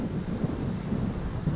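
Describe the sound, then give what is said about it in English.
A steady low rumble of ocean surf washes continuously, broad and unbroken, with faint swells in intensity and no voices present. “I want you to hear the waves in the background.”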